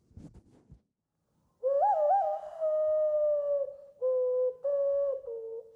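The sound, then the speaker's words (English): Hand whistling: a breathy, hollow, owl-like tone with a few quick pitch wiggles at first, then long steady notes in a short stepped phrase, loud and alone after a brief rustle. “I was on MDMA one day, and I remembered I could do this hand whistling.”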